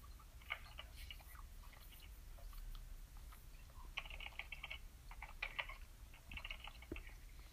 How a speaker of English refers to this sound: I hear typing noises. Or maybe that's, like, the crunching of a bag.